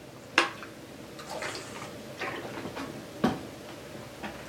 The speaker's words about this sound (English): Excuse me. Let me get a drink of water here.